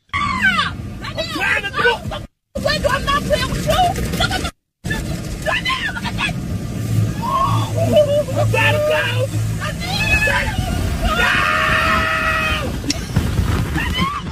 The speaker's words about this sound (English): They went for a car wash, and the boyfriend thought it would be funny to put the windows down, but then he couldn't get the windows back up as he went through the car wash with his girlfriend. That's not a good idea.